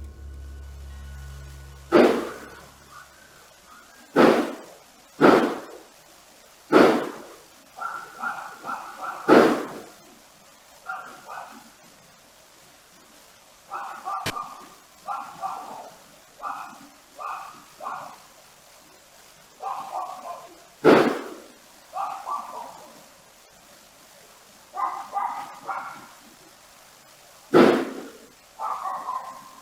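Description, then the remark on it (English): Sharp, loud gunshot-like cracks ring out one at a time at irregular intervals, about eight in all, while a dog barks in short bursts between them. “A neighbor of the Millettes did capture some weird sounds in the area that night. Many believe they are gunshots, but this is yet to be proven.”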